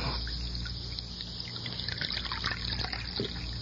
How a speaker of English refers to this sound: Let me pour you some coffee.